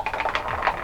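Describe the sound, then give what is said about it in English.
A brief burst of rapid clicking and clattering as dice are rolled across a hard tabletop to roll damage for an attack in a game, lasting under a second with no voices. “could you just roll damage for that attack, please?”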